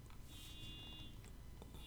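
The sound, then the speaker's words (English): A car alarm sounds faintly in the background, a steady high-pitched electronic tone that holds for a moment, fades, then returns, over a low background rumble. “That car alarm is going off in the background.”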